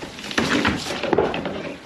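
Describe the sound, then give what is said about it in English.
A wooden shed door creaks and scrapes open, with a couple of sharp knocks and rattles as it's pushed through, no one speaking. “If I can get through the door.”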